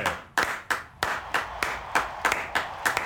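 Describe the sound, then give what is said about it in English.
Three people clap in a steady, sharp rhythm, about three claps per second, fairly loud, while someone briefly speaks over them. “I know you're working the camera, but we only have 3 people in here, so you got to clap.”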